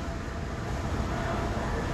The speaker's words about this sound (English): Sorry, people. There's technical difficulties behind us. It's a train.